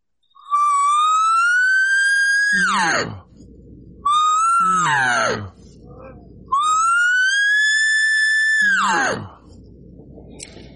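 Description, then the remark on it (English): A loud human voice slides its pitch upward and holds, then swoops sharply down, like a siren, three times in a row with brief pauses between; a vocal siren exercise practising air control for elk calling. “They call it the siren going up and down.”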